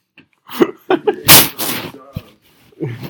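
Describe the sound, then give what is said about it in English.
A loud, breathy yawn swells and trails off into a voiced, wavering tail, set among a few short murmured vocal sounds and clicks. “You keep interrupting me and I can't get a good yawn in. That's why I'm yawning again.”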